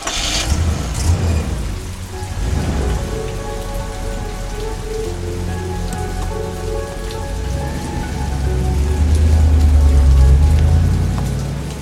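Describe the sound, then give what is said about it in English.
Steady rain patters on a hard surface at night while a car engine idles and then pulls away, its low rumble swelling before fading; no one speaks. “With that last awkward exchange, he's off into the night. And I'm left standing in the rain”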